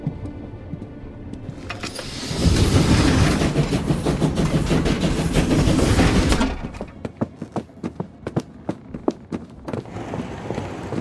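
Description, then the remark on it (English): Inside a moving passenger night train: a steady, loud rumble of wheels and carriage swells for several seconds, then eases into a rhythmic clickety-clack of rail joints ticking by in quick succession. “What are you two doing on the night train?”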